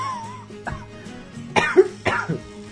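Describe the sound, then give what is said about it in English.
A person with a lingering cough coughs several times in quick, harsh bursts, with a throat-clearing rasp between them, fairly loud, no talking. “God damn it, I can't shake that stupid cough.”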